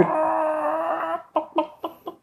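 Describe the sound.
Voices imitate a chicken: a drawn-out, wavering squawk followed by four short, evenly spaced clucks, fairly loud, with no talking.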